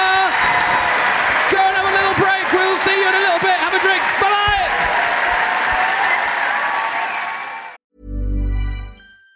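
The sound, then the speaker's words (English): A live audience applauds the first three guests of the evening at the interval, loudly and steadily for several seconds, with scattered whoops and cheers rising over the clapping before it cuts off abruptly into a brief, different sound. “Can we get a massive round of applause for our first three guests of the evening?”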